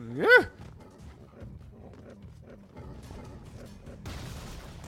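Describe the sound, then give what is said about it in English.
A single loud, sharp dog bark from a video game rings out at the start, followed by a low rumbling game background and a burst of hissy noise near the end. “That dog is wanting your butt.”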